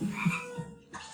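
A frog croaks a few times in quick, uneven succession, low and throaty, on its own with no voices, the calls trailing into a soft hiss of ambient noise.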